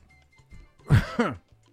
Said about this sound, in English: Oh, my goodness. I coughed.